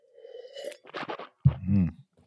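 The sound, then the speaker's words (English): A sip of light red wine, a 2020 Language of Yes Grenache from Rancho Real Vineyard in the Santa Maria Valley, from a glass: a short airy slurp, some wet swishing, then a low throaty swallow sound, with no talking. “And I'm going to take a sip of it.”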